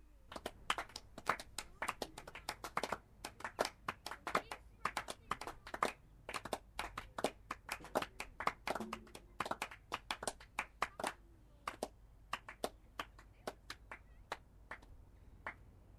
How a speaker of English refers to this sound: There is applause for every scoring shot, and sometimes there is applause when a run hasn't been scored.